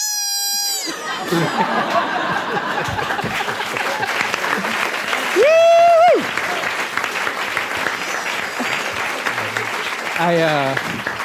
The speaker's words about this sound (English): I realize I clapped with everyone else.